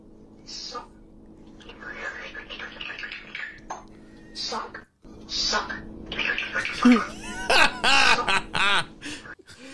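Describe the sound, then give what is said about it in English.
Harsh, raspy bird calls from a video clip being played back come in scattered bursts, building to a dense flurry of loud, squawking cries near the end over a steady low background hum. “It's the things this poor bird has seen.”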